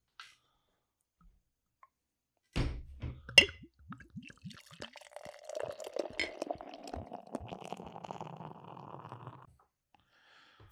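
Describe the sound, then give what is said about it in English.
After a moment of quiet, a couple of sharp knocks and clinks lead into several seconds of steady gurgling pour with a fizzy edge, as Oktoberfest beer fills mugs, then silence. “Let's get right into the fucking pour.”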